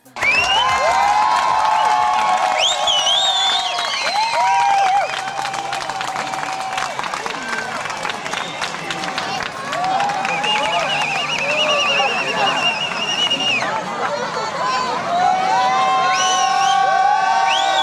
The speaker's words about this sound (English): What you can hear right now is the sound of crowds cheering in Luxembourg City as the sky goes black in the middle of the day, because in this year there was a solar eclipse that was visible from Luxembourg.